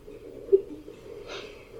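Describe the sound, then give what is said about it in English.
A voice imitates a woman's heavy, raspy breathing, with a sharp gasp early on and a longer airy exhale near the end, no words spoken. “She's probably just breathing really hard.”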